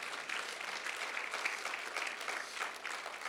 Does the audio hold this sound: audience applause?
yes